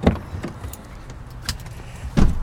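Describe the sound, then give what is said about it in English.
People climb into a parked car, one into the front passenger seat: scattered clicks, rustling and shifting, a jingle of keys, then a heavier thump near the end like a door closing. “But the sound quality near the propane tanks is a bit iffy, so we move into my car.”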